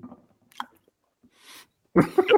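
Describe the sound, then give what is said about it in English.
Someone uses their mouth to mimic Mychal Thompson eating popcorn with his mic off during a radio broadcast of the NBA Finals: a few soft smacks and clicks, a brief breathy hiss, then a loud burst of crunchy, wet munching near the end. “NBA Finals, and we are on the air, second half, and Mychal is eating popcorn.”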